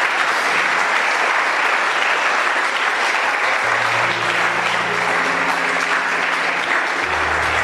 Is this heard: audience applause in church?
yes